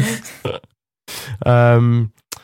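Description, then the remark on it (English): A loud burp rumbles out for about half a second, low and buzzy, after a couple of short breathy vocal noises and a brief pause. “Sorry, I've got the burps. I've got the burps.”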